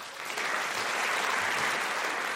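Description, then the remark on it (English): Sustained applause from a debate audience welcoming Columbia University professor Jonathan Cole, a dense wash of many hands clapping that swells in the first half-second and then holds steady and fairly loud throughout, with no voices. “Jonathan, this is a home crowd for you.”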